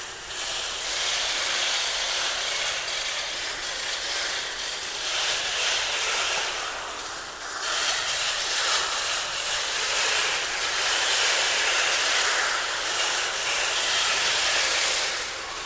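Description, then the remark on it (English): A dense, unbroken din of oilbirds chattering and cackling in a cave, countless harsh, raspy calls overlapping into a loud, hissing roar that holds steady throughout, with no one speaking. “And then you hear the oil birds whose voices, I mean, it's a sound like I've never heard before.”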